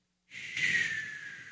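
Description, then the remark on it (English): A person imitates snoring with one drawn-out, breathy nasal inhale that comes out more like a snort, rising quickly to a hissy peak and then trailing off, with no talking. “I was supposed to be me snoring, but it kind of just sounded like me snorting.”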